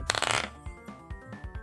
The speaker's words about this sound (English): Okay, roll an attack roll. A normal one.